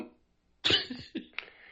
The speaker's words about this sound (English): Oh, my God. I just had a coughing fit. I had to, like, mute it. I was over here dying just now. Oh, God. There's tears in my eyes.